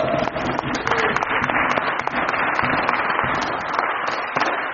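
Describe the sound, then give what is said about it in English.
A church audience cheers and applauds for people who have been saved, dense rapid clapping at a steady loud level for several seconds, with scattered shouts and whoops mixed into the noise. “Can we just have a cheer for that?”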